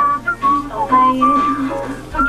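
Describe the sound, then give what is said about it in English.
Someone whistles a short melodic tune, clear pure notes gliding between pitches in a continuous phrase with no talking. “That's my whistle.”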